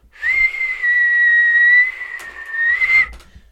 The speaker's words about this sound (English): That was a weak one. Fuck this podcast. Fuck my whistle.